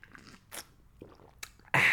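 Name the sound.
sipping coffee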